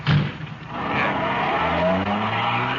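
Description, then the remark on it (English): A car roars away loudly, tires squealing as it accelerates, the engine pitch rising steadily over a few seconds with no talking. “Here's the car. Let's go. Ben, you drive, huh?”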